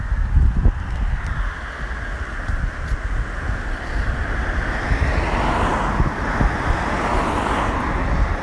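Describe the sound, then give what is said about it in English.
Strong wind roars steadily outdoors on a warm, wet day, a loud continuous rushing with low buffeting rumbles against the microphone, lasting throughout with no voices. “But an umbrella's useless when it's really windy.”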